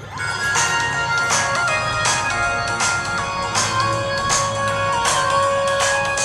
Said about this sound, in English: One of the positive features of this phone is meant to be the stereo speakers, so I'm going to play as a bit of music.